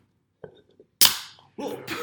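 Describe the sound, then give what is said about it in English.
A sharp pop as a drink is cracked open, followed by a fizzing hiss that fades over half a second, with faint handling clicks before and a rustle after. “Wait, I didn't open my drink.”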